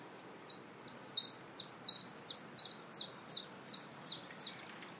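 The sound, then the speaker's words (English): A chiffchaff sings its repetitive, mechanical two-note song, about a dozen evenly spaced, bright chirps alternating in pitch, clear over a soft, steady background hiss. “That very mechanical dink, dink, dink you can hear is the chiff-chaff.”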